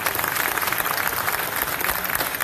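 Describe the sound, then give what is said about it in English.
A crowd at a signing event applauds Eddie Shack and Johnny Bauer steadily, a dense wash of overlapping hand claps at an even, sustained loudness for a couple of seconds, with no voices standing out. “If everybody could give a great round of applause for Eddie Shack and Johnny Bauer.”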